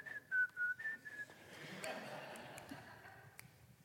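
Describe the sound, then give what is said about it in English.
A person whistles a short, clear tune of a few quick notes, fairly loud, then it stops and only faint background noise with a few light taps remains. “By the way, when I wash windows, when I whistle, it makes it so much more enjoyable. So whistle while you work.”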